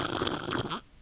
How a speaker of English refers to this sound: Wow. Right into the microphone. Sipping a little bit of the bubbly. I wish it was a bit of the bubbly, but it is only 12 p.m. here in sunny Australia.